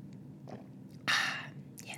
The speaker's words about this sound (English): Okay, so I've been also trying to take a sip of coffee for the last like 5 minutes.